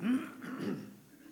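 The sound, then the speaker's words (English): A man clears his throat twice in close succession, two short rough voiced rasps, with no talking alongside. “Let me just clear my throat for a second.”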